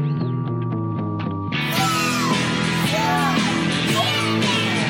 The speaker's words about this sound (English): If you listen close, you can hear kids screaming.